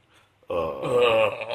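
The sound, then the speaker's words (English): A single long, loud burp made as part of an Obama impression, starting abruptly after a brief quiet moment and rumbling on for about a second with a deep, throaty, voiced tone. “Every time you do Obama, you got to burp.”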